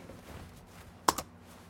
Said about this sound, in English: Okay, I'll do the typing.